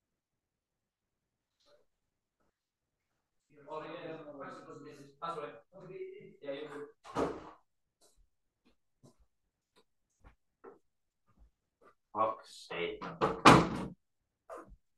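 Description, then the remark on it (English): A man mutters briefly, then a front door bangs. After a quiet stretch of faint footsteps, a second burst of door clatter and thuds sounds as it opens and shuts. “Do I just go like, right, okay, I'll be back in 2 seconds because someone's just rung the fucking doorbell.”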